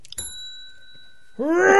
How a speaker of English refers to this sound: Role play! The Bell of Quickness!